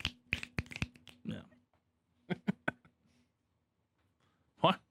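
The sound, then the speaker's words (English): A golf clap sound effect: a handful of soft, polite hand claps in two short bursts separated by a pause, followed by a brief vocal sound near the end. “That was standard applause. Like a golf clap.”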